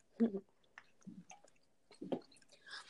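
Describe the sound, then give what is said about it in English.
Quiet slurps and swallows as someone sips water, a few soft wet mouth sounds spaced out over a couple of seconds with no talking. “Let me just get a sip of water.”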